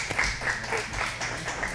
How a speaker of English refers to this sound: And so give her a hand. She doesn't want to be clapped, but you have to clap her anyways because I love her.